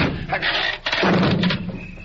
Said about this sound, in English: The door caved in.